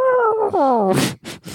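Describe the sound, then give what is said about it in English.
A person imitates an elephant trumpeting as a victory celebration: a loud, wavering vocal blare that slides downward, followed by three short, breathy, rasping blasts. No words are spoken. “I do elephant trunk victory, like.”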